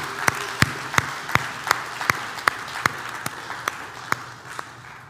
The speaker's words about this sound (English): And so if you guys could just give a round of applause to these Club 5-8 leaders, they're amazing.